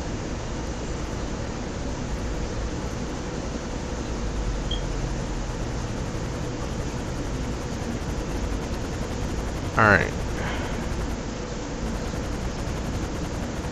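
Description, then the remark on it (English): A helicopter in a video game drones steadily overhead, a constant rumbling, whooshing noise filling the whole stretch, with a brief sharp chirp near the end and a single word spoken quietly. “Alright, whoever's on the server probably has some pretty bad internet because I can hear a helicopter flying overhead, and the helicopter's causing my game to lag.”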